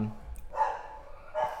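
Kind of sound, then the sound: animal, dogs barking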